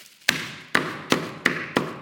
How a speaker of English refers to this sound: Let me just get my hammer. Wait a sec.